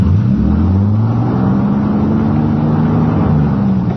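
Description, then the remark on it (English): A stuck car's engine revs hard and steadily for several seconds as it is shoved into reverse on a canyon road, its pitch rising and falling in drawn-out strained sweeps, loud, with no voices. “We were stuck, hopelessly stuck.”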